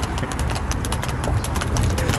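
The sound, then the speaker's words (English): Steady clip-clop of a horse's hooves striking hard highway pavement, a quick regular rhythm that carries on throughout over a low rumbling background. “Horse on a highway!”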